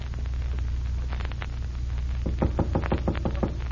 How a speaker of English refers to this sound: Wise guy knocking on his own door. Is that a signal to you? It don't mean nothing to me.